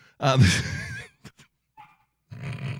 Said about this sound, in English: fucking dogs are barking in the house. What is all the sound coming out of the studio? What is going on in there?